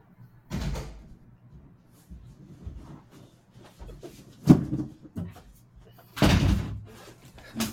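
A front door is pulled open with a thump near 0.5 s as someone answers it for a visitor, followed by quieter shuffling and movement, a sharp knock-like hit, then the door shuts with a solid bang near the end.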